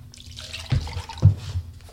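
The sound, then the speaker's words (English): Water splashes into a glass, two brief liquid bursts a half-second apart over a soft, wet trickling background, with no one talking. “I think I will have that glass of water, thank you.”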